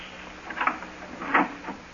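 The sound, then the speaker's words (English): A door is eased open carefully to peek in at someone who may be asleep, with two faint scraping, rustling noises about a second apart, quiet, with no voices. “Well, we'll open the door carefully and peek in.”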